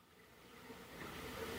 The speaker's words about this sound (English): No one answered Celeste's door, but I heard a shower going inside, so I took the liberty of entering, persona non grata.